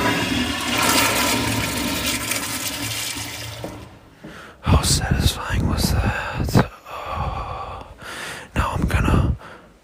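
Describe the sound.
A toilet flushes up close with a loud, steady roaring rush of water lasting several seconds, then stops abruptly and is followed by breathy voices and gasps.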